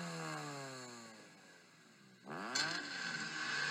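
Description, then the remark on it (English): A voice buzzes out a raspy engine imitation, its pitch sagging as it winds down, then surging back up into a loud, strained rev like a souped-up exhaust, with no talking. “Worst racer, ricer exhaust sounds ever.”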